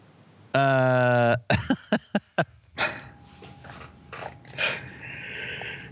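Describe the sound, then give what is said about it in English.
A dog named Leiden, just woken up, growls loudly: one sustained rumbling snarl, then a quick run of short sharp bursts, followed by rougher, noisier growling sounds. “He gets up and starts to growl.”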